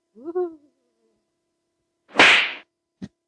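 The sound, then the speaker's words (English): A slap sound effect: a breathy whoosh sweeps through, then a single sharp, crisp smack lands loud. A short voiced exclamation comes just before. “Oh, slap that. You like to be slapped.”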